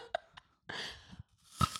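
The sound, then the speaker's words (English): A crisp crunch of someone biting into a crispy green apple, followed by a few wet, crackling chews, with sharp snaps of the fruit breaking apart. “chewing a delicious crispy green apple, which is my favorite apple.”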